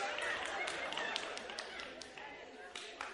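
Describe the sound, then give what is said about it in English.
An audience applauding: a dense, steady patter of many hands clapping for about three seconds, with scattered sharper claps and a murmur of voices mixed in. “Can I applaud to that?”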